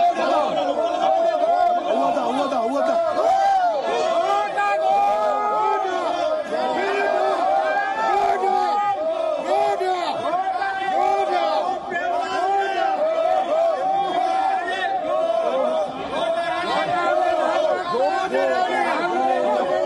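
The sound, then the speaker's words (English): Lawmakers in the Sri Lankan parliament booing President Gotabaya, a loud, unbroken roar of many overlapping voices jeering and shouting together for the whole stretch, with no single speaker standing out. “But today he's being booed out of parliament.”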